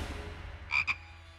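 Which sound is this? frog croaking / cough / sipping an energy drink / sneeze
frog croaking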